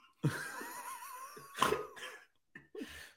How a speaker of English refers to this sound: Why did that happen? I just laughed so hard that I coughed. I think I threw up.